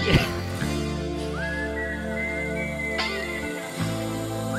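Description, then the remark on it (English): A clear, bright whistled melody glides in slow sustained notes over a steady, soft band accompaniment with deep held bass tones, like the opening of a rock ballad. “One of the great whistle tunes.”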